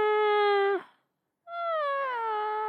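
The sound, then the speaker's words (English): A voice imitates the air conditioning unit in their room with two sustained, buzzy droning tones: the first holds a steady pitch, then after a short pause the second starts higher and slowly slides down. “An impression of the air conditioning unit?”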